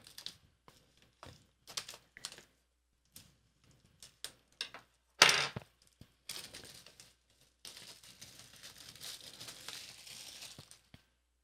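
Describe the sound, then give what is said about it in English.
Crinkling of plastic wrap as it is cut and torn open, starting with short sharp snips and crackles, then settling into a steadier, rustling tear. No one speaks. “let's open this up and see what we have in here. Again, I'm using my Prince Charming sword.”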